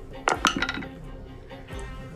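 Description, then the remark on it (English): Dice, switched in for another, are rolled for an attack and clatter and tumble across a hard surface in a quick burst of several sharp, bright clicks, followed by a lone click a moment later. “I'm just going to switch this dice in.”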